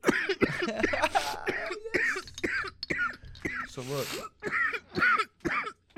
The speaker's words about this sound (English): That's a big hit, too. I'm going to cough.